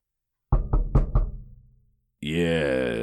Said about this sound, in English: No, can I knock on the door first? Yeah.